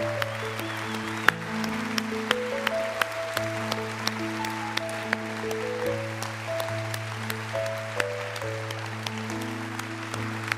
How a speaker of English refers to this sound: Now you better keep clapping because your hands have a lot of time to rest this afternoon.